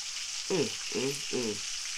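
A steady hiss and crackle of food frying in a pan, almost ready, runs throughout, with three brief voiced murmurs in quick succession over the sizzle.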